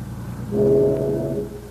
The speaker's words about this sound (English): Did you hear that whistle? Yeah. That's no traffic whistle. It sounded like one on a steamer.